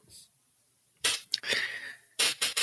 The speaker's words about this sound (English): Oh my God. Stop slapping yourself. That is so rude. This is the ambiance.